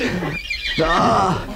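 A horse neighs loudly, a shrill whinny with wavering, quivering pitch that breaks briefly and then trails off, heard alone without any talking.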